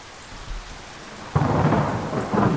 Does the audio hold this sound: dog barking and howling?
no